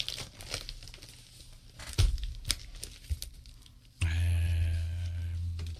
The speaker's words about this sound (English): Might be able to use a pen. I don't have my pocket knife either. There's a pen over there if you want to throw that my way. Opening packages on the radio.